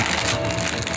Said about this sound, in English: Sounds like you're rustling a bag of Skittles against the mic. Because he is rustling a bag of Skittles against the mic